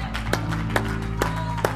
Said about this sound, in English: Give the Lord another hand clap and a shout, this time for the sacrifice.